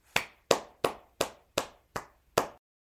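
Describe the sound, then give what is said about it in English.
Seven sharp, crisp hand claps from a single person in a steady, evenly spaced rhythm, each a bright smack with a short decay, followed by silence. No one speaks. “From me to you, here's a round of applause.”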